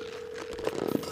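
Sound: telephone dialing and ringing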